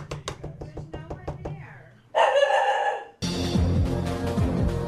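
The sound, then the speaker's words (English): A quick series of sharp taps gives way to a small dog's loud, high-pitched barking, which is then swallowed by a dense burst of busy background noise. “Silly little dog. Go see who's there.”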